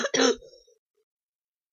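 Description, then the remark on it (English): A single harsh, fairly loud cough from a person with a bad fever, with a rough trailing exhale, then near silence before another burst starts at the very end. “I'm sorry I keep coughing.”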